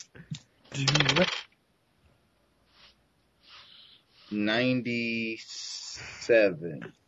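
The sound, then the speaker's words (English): Themed dice clatter briefly across a hard tabletop, a quick rattle that settles within a second on a roll of 92, followed by quiet ticks and then voices reacting. “You can always roll a 1.”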